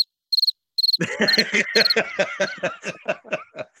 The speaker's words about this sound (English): Crickets